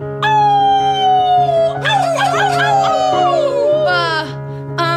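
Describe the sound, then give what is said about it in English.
A pack of wolves howls together, several long wavering cries overlapping and sliding down in pitch, loud over a steady low drone, with a fresh howl rising near the end. “a bunch of wolves who are just like staring at us”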